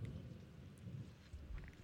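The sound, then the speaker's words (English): A low, rolling rumble of thunder after a big flash of lightning, deep and continuous with slight surges, heard fairly quietly, with no voices over it. “Big flash of lightning right in front of our face.”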